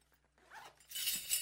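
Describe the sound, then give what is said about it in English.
A zipper on a costume is pulled in one quick, rising rasp, starting soft and swelling into a bright, hissy burst that ends abruptly, with no voices over it. “Here, can you get this zipper?”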